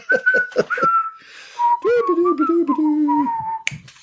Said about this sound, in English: That was totally worth that 10 seconds of whistling.